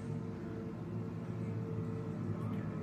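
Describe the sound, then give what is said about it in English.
A police car's engine hums loudly and steadily, a continuous low rumble with no siren, holding an even level throughout with no voices. “We're about to get crashed into by a cop car.”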